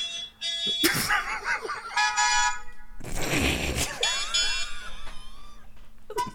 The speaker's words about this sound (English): I got like 8 cars here. I'm running up and opening every car and honking their horns to get your attention.